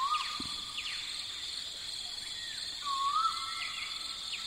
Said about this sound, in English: this is the bird that arrives from late September to early October when the male is singing his advertising call all day and night